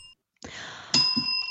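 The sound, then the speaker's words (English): A bell chime is struck once and rings out with a bright, sustained metallic tone, preceded by a short burst of noisy clatter. It is fairly loud, with no talking. “My bell's broken.”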